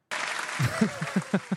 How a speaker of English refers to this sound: McCarthy's out, guys. And a clap.